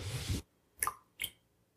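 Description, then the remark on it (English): A short rough splash or rustle, then two separate little plinking drops of water being added to brandy, fairly quiet, spaced under half a second apart. “Should we try this with a touch of water?”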